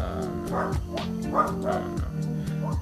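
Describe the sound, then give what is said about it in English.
A dog barks repeatedly in short, sharp yaps about every half second, fairly loud, over a steady low hum. “Silence, dog.”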